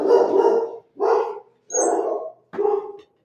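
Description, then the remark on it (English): Four loud barks from puppies at a house in Maine in spring, each a short harmonic yelp separated by brief pauses, with no voices present. “We thought we'd try to do the podcast at the house again with the puppies.”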